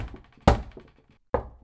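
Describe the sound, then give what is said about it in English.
Sharp knocks on the wooden door of Athos's apartment, given as a three-tap signal: a softer rap at the start, then two loud, resonant knocks spaced almost a second apart, each ringing briefly before fading. “Open the door to no one unless you hear three taps like this.”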